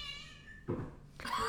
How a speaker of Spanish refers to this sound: Perdón, mi gato está desesperante hoy. Quiere hablar en el podcast, a ver. Ah, él es un bebé, él es mi nuevo gato, es pandémico, nació en la mitad de la pandemia.